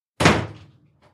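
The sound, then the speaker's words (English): A door shuts firmly as a man walks out, with one solid, echoing thud that fades over a moment, followed by a faint click of the latch. No voices. “He's actually walking out the door.”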